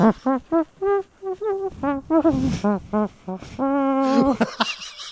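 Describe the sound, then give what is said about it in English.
A voice imitates a trumpet with a string of short buzzy tones, then longer held notes, rising and falling in a jaunty melodic rhythm, loud and alone. “Went a little mouth trumpet on it.”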